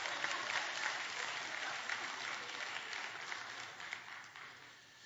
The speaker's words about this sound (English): So give my helpers a great big hand clap.